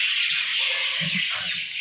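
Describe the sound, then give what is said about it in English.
Loud, dense bird chirping at 3 a.m. fills the whole recording, a constant bright chatter of many calls overlapping with a few squawks, steady throughout with no one speaking. “These birds are scary.”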